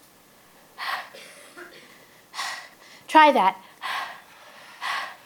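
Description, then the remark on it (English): Four breathy, aspirated exhales like a drawn-out 'hhh', a person voicing the letter H like panting, spaced about a second apart, with a short spoken phrase between them. “It's like panting, right?”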